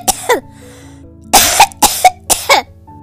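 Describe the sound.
A child coughs: one quick double cough, a brief pause, then three more paired coughs in quick succession, fairly loud with no one talking.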